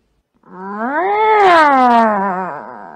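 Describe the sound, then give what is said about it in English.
A person imitates a long, whiny, dissatisfied cat meow, a single drawn-out call that rises in pitch and then sags down in a complaining tone, clear with no other sounds. “Okay, then we have the dissatisfied meow.”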